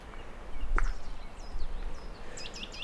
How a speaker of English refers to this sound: There's a nuthatch singing above me.